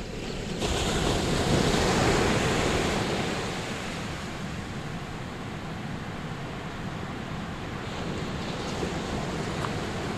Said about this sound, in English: Behind us there's a surf beach, a marvellous surf beach, miles of it, and in front of us there's a system of dunes.